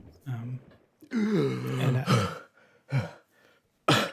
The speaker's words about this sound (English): I splutter and cough up a fair bit of water.